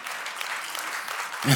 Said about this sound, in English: Thank you for that overwhelming golf clap. I really love it when you participate.